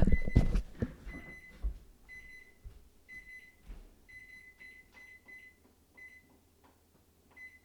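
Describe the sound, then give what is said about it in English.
A kitchen timer beeps repeatedly in short, evenly spaced electronic tones, fairly loud, with some clattering and handling noises at the start. “oh, there's my timer.”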